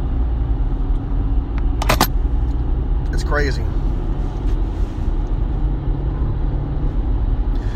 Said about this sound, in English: On my way to work, I just saw the three. It looks like a 3-car accident. I was wondering why traffic was going so slow.